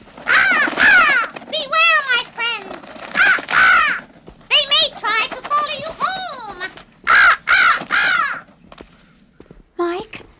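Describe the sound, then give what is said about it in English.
A raven caws repeatedly in loud, harsh bursts, a long run of croaking calls in quick succession with short pauses between, clear. “There's that raven again.”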